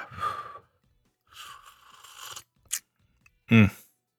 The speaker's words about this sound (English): Let me just grab a quick sip of coffee here.